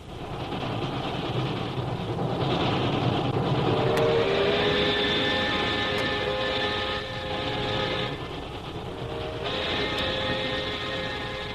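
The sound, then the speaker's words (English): A steady, loud rumble of a train bound for Calcutta rolling along the rails, with a droning hum and occasional faint clicks from the track, continuing without a break and with no one speaking. “we find Jungle Jim and Shanghai Lil on a train bound for Calcutta”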